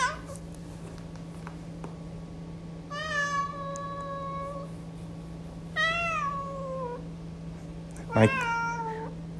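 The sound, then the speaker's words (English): A male pet cat meows three times, drawn-out harmonic cries spaced a few seconds apart, clear, over a steady low electrical hum; the last call is sharper and louder. “My cat doesn't like it when I talk about power, apparently.”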